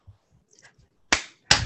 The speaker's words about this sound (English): So, okay. I am clapping because... it's true.